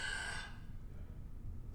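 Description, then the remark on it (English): A person imitates a sleep apnea gasp: one short, raspy, strained intake of breath lasting about half a second, then only a low background rumble. “They just stop breathing for like a whole full second or something.”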